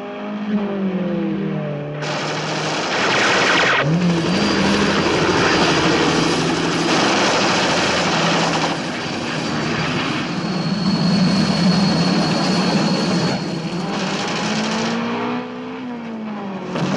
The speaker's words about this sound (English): And then he's underwater and there's a helicopter directly above him.